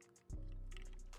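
Sparkling water is poured into a cup, starting abruptly and running steadily for about a second, with a low gurgling stream and faint fizzy crackle on top.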